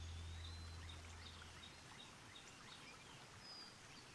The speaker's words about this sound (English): The end credits roll, this time not to a song, but what we hear is the water flowing below the bridge and the birds of boring Oregon.